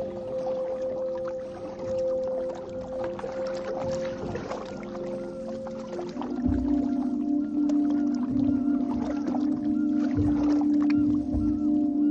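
A kayak moving through water: a steady, droning hum with sloshing, watery texture that grows a bit fuller halfway through, continuous, with no one speaking.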